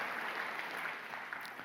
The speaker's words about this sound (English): Yeah, y'all can clap for that.